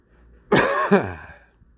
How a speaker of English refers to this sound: You know, you go in the store and cough like I just did, and in some countries now they'll throw you to the floor, put handcuffs on you, and take you off to a concentration camp.